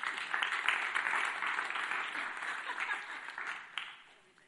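An audience applauds steadily, a dense wash of many hands clapping at a fairly even level before tapering off near the end, with no voices standing out.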